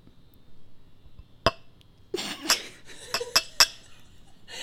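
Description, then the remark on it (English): Glasses clink together several times, bright, with one isolated tap followed by a quick cluster of ringing clinks over a soft rustling, pouring-like wash, as a drink is being poured. “I just meant like as you're pouring it, make sure you clink it.”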